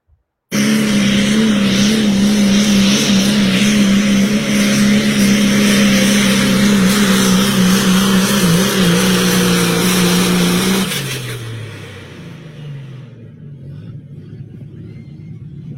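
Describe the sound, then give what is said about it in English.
A diesel truck competing in the diesel truck class at Manila, Iowa, on a Saturday night gives a loud, steady engine roar with a deep droning hum for about ten seconds, then winds down as the engine throttles back and idles lower. No one speaks. “This is the diesel truck class in Manila, Iowa, Saturday night.”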